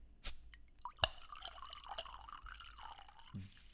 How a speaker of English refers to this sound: All right, I'm going to do a little pour of my wine. Ready? Two, one, go.